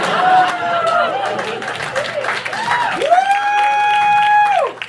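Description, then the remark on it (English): An audience claps steadily for about five seconds, with scattered cheers and a long, rising-then-falling whoop riding over the applause near the end before it cuts off. “That's not the ending, but I do deserve a clap for that.”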